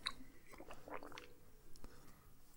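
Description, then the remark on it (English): Wet chewing of a Snickers candy bar, with smacking and squishy mouth sounds repeating irregularly, heard on its own without talking. “Eating Snickers.”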